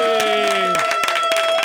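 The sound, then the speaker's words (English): A short burst of audience applause and cheering for the sponsors and management of The Weekend Gardener show, with scattered sharp claps over a steady, sustained tonal hum, lasting under two seconds at a fairly loud, even level. “Let's cheer it for them, folks.”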